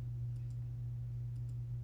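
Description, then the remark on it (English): Two quick double clicks, like a computer mouse clicking on the camera, sound faintly against a steady low electrical hum, with no one speaking. “I'm clicking on the camera.”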